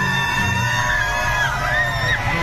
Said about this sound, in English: Why would they cheer for a white supremacist?